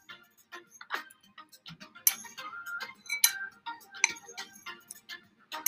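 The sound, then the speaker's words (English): A cup of water is set down amid a flurry of light glassy clinks and taps, irregular and bright, some with a brief ringing tone, and no one speaking. “Water, cup, setting.”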